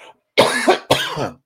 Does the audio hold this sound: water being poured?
no